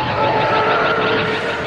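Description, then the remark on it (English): A loud, sustained TIE fighter engine scream, a harsh roaring whine with a steady high-pitched shriek running through it, with no voices; made by combining the squeal of a young elephant with the sound of a car driving by on a rain-slicked highway. “Sound designer Bert produced the scream of the TIE fighter by combining the squeal of a young elephant with the sound of a car driving by on a rain-slicked highway.”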